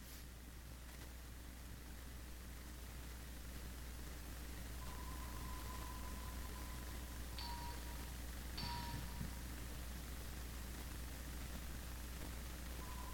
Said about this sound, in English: And he just kept hearing that sound. That pinging sound. He wasn't sure what it was, so he got closer to the ship, to the submarine, the diver. And he kept hearing it.